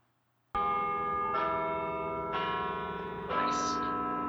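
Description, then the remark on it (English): Large tower bells of the Peace Tower ring out loudly to mark the hour after a brief silence, with three or four overlapping strikes whose long, shimmering tones sustain and layer into a rich, resonant chime. “I actually did get a DM from one of our listeners about the Peace Tower bells, and he just sent me like two or three word response.”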